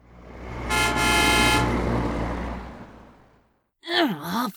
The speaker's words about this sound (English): Instead, there was the loud blare of a car horn that shot through him, causing a whimper and a cringe.